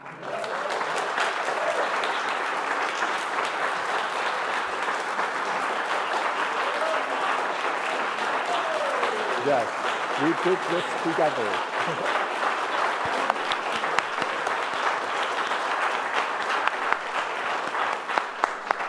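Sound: audience applause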